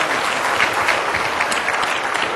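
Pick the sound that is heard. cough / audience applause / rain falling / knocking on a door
audience applause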